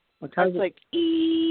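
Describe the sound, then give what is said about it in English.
A short burst of vocal sound, then a steady, sustained high-pitched ringing tone, voiced in imitation, held evenly and fairly loud for about half a second. “So how does it sound, the high pitch? Does it sound like a let's say, electronic issue, or does it sound like a ringing of a bell?”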